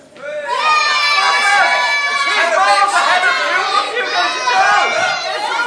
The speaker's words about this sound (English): This is how the crowd was on the day. They were so excited.